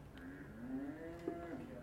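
A cow moos in one long, drawn-out low call lasting nearly two seconds, with a slight rise and wobble in pitch near the end; clear, no talking.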